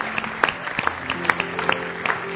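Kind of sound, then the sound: crowd, church audience applauding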